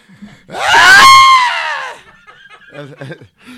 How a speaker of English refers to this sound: You keep screaming like that?